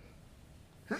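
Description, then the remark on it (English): A single sudden sneeze caused by seasonal allergies bursts out loud at the very end, following a second of near silence with only faint background hum. “Bless you.”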